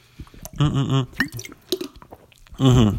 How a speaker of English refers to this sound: excuse me, let me have a sip of water for my little, for my red robins, my old red water bottle right here. 1 second.